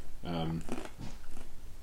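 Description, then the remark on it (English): A crisp crunch of someone biting into a piece of bread cut like a mini pizza slice, a few short brittle bursts, with a brief murmur of voice just before the bite. “You might be able to hear the crunch.”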